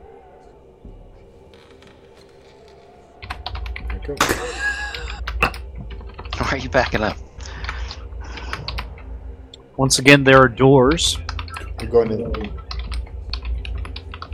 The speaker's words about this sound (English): It's more fun to type. More fun. That's hilarious. It's more disruptive. I like the broken cadence of it.